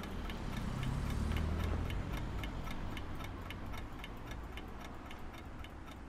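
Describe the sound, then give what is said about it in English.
A wind-up alarm clock ticks steadily at an even, brisk pace, clear, inside a parked car with the window cracked open, over a low rumbling hum of passing traffic that swells early and then eases. “Between that, the clicking of the alarm clock and the swish of the passing traffic, believe it or not, I drifted off to sleep pretty quick.”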